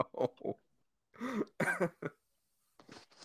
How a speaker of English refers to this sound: He was coughing or something, but he was like, I did not making a what? He was making a really gross sound while he did it.